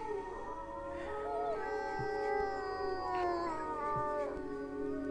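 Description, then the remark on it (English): Long, wavering howls rise and fall continuously, with several voices overlapping in a sustained chorus, as a person at night on a cliff under the moon mimics a wolf's howl, answering a distant wolf, over a faint low background hum. “Somewhere way off in the distance, a wolf howls. I howl back.”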